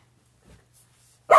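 A dog lets out one sudden, loud bark at the very end, after a near-silent stretch with a faint low hum and a soft muffled thump.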